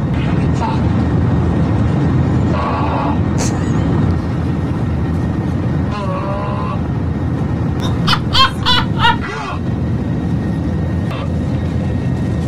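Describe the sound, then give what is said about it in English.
Strained, moaning vocal noises crackle over a public address system in bursts, rising and gurgling like retching, above a constant loud airplane cabin drone. “flight seems to have broken into the intercom system and continues to make a sound that is somewhere between an orgasm and vomiting.”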